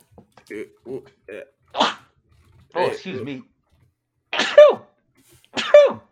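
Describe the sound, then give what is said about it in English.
A few short breathy catches build up, then two loud sneezes burst out one after another near the end, each sharp and forceful with a voiced trailing edge. “Oh, I got a sneeze coming again.”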